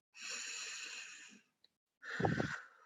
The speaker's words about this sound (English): But can we all start again with a deep breath?